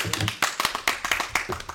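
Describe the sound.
A short burst of applause for a managing editor: several people clapping at once in a quick, uneven patter of sharp, crisp claps, fairly loud throughout, with a faint murmur of voices underneath.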